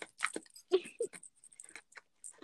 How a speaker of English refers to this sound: Chew your ice.